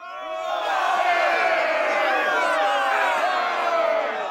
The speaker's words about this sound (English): And along the way, they hear there's some commotion going on, some shouting, screaming.